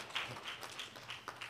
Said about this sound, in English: Give yourselves a big clap offering. Amen.